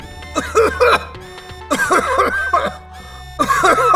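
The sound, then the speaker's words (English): Loud, harsh coughing comes in three close bursts, each a quick run of hacking coughs from a person breathing in a smell of rotten eggs, with a low steady hum underneath. “I took a step towards it, and the smell of rotten eggs filled my nostrils. I coughed loudly.”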